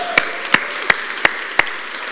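Applause made of five sharp, evenly spaced claps over a low, steady background wash, at a moderate volume with no voices.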